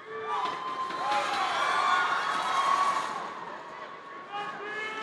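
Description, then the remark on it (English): A large crowd of SkillsUSA students gives a standing ovation for SkillsUSA's leaders, mentors, volunteers and sponsors, cheering and whooping loudly for several seconds, many high shouts and yells overlapping in a dense, sustained roar that dips briefly near the end. “I need all of you as students of Skills USA to provide an electrifying standing ovation for Skills USA's leaders, mentors, volunteers, and sponsors.”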